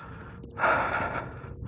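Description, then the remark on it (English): A pet cat hacks and clears its throat in a few raspy, breathy bursts, with a harsher wheezing push in the middle, at moderate volume and with no talking. “Sometimes he's just clearing his throat.”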